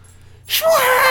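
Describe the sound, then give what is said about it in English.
A voice imitates a TIE Fighter's scream after a brief silence: a sudden, loud, breathy hiss that turns into a harsh, sustained screech with a faint tonal whine underneath. “Yeah, so that's what makes the TIE Fighter screaming noise. I did it wrong. That's not what a TIE Fighter sounds like.”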